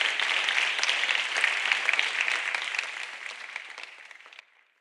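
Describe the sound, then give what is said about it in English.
An audience claps steadily for speaker Chris Johnstone at the Change Now Summit in Paris, May 2022, a dense crackle of many hands that holds for about four seconds before quickly dying away into near silence. “Ladies and gentlemen, please make a round of applause for Chris Johnstone.”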